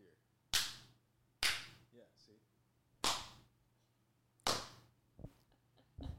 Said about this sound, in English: So, because I'm like, every time I try to clap, I just feel like it doesn't have that like echo. Yeah, like I feel like I try for it and then it's like, eh.